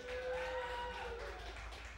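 An audience at a comedy show applauds steadily to vote for the winner of a joke round, with dense, continuous clapping mixed with a few sustained shouts or cheers, lasting the full two seconds without a break.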